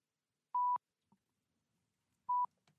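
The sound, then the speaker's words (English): Two short, loud electronic phone beeps, a steady tone around one pitch, separated by about two seconds of near silence with faint clicks between them. “Why is it beeping?”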